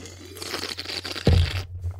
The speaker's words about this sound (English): I'm gonna drink a thing of water right here.